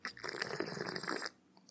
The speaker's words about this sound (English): With me, as almost always, is a small drink of whiskey, a little splash, a light puddle. Here is what my whiskey sounds like.